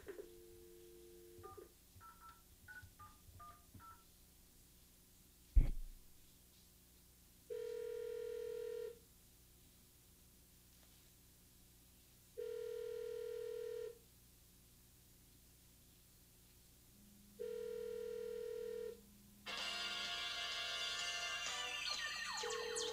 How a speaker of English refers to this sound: And the phone is ringing, so I'm going to put it to my head.